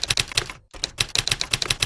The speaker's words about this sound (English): I can hit E. Search edit combo. I Search can edit combo. press enter and I can type a search.